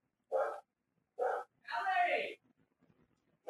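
A man yells at a barking dog: two short, loud bursts followed by a longer drawn-out wailing cry, close and prominent, then faint scattered rustling.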